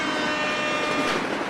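A sustained train horn sound effect blares over the steady rumble and clatter of a rolling train, loud, filling the whole short stretch with no voices.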